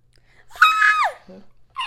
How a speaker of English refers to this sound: Okay, hold on. Just hold on. You're screaming.